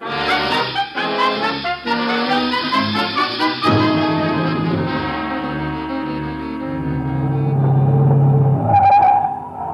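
A car engine roars at speed as the car races to overtake a train, its loud revving rising and shifting pitch, with a steady low rumble underneath and no voices.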